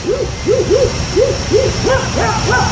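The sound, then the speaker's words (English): A neighbour imitates a hooting bird call, giving about eight quick, rising-and-falling hoots in a steady rhythm, fairly loud, with a faint hum behind. “Anyway, and the next one is the neighbor here.”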